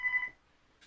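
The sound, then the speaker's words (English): A landline telephone in a studio in Florida rings once in a short, bright electronic burst that quickly fades into near silence, with a faint hiss at the very end and no one speaking. “There's the phone ringing here now.”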